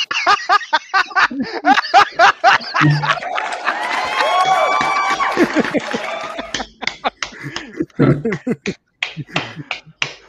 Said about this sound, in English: The applause were for you being gone, not for coming back.